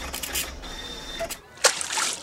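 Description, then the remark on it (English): A sharp splash as something drops straight into water, followed by brief sloshing and dripping sounds, moderately loud. “That's gone straight in the water.”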